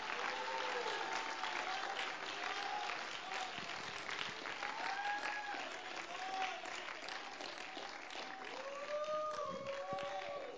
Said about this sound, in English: If you're thankful for the mercy of God, why don't you put your hands together and clap them unto the Lord?